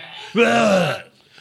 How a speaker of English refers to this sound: Did he throw up? What the fuck was that? It might be that coffee. Holy shit. He sounded like he just fucking vomited.